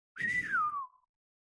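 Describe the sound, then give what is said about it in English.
A person whistles a single bird-like note, a clear tone sliding smoothly downward for about a second, fairly loud with a little breathy rumble underneath, then silence. “I want to do a whistle.”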